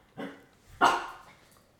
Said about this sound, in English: Teddy barking is a problem.